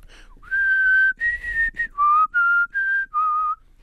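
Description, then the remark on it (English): A person whistles the Olympic theme tune, a fanfare: two long held notes, then five shorter sustained notes in a steady rhythm. The whistle is clear but slightly breathy, with no talking. “Can you do the Olympic theme?”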